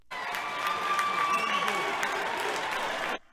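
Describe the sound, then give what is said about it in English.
A group of vote counters counting absentee ballots at the TCF Center in Detroit, Michigan, claps steadily for about three seconds as a GOP poll watcher is ejected, a dense burst of applause with no words, then it stops abruptly. “What just happened there was a GOP poll watcher just got ejected, and all of the people that are counting the votes are clapping.”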